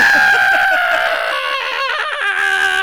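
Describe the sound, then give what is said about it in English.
A person imitates the long, pained scream of a movie actor getting hit, loud, its strained, wavering cry holding for nearly three seconds without any words. “That's how he screams. I'm getting hit.”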